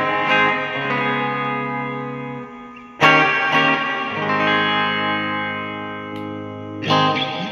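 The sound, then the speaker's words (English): A clean Strat electric guitar on the bridge pickup, played through a Musa 900 effect, strums sustained chords that ring out into a vast, washy reverb, with new strums at regular intervals blooming and lingering over the decay. No voices. “It's a huge reverb.”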